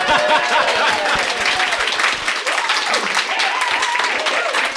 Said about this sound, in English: Hello, heroes. You can clap. It's fine.